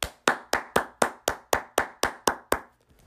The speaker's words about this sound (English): Praise the Lord. Give a hand clap for the Lord.